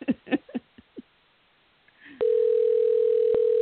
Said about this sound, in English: So we're dialing live, and here we go. We can see if we can get the phone to ring. One ringy dingy.